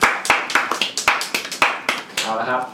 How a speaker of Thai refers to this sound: โอ้สุดยอดสุดยอด ยังครับ ก็บอกเขาว่าสุดยอดครับปรบมือปรบมือ แบบนิ่งโอเวอร์ชั่น